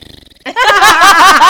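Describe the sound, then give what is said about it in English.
A voice imitates the squeaky fart a woman let out while lying on a bed: a short low sputtering buzz, then a loud, high, wavering squeal that holds for about a second. “She farted this afternoon.”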